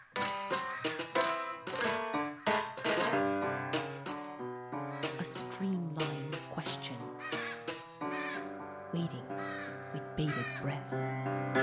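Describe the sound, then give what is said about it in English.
Crows caw loudly and repeatedly, several harsh calls overlapping in a dense, continuous chorus for the whole stretch. “Each crow.”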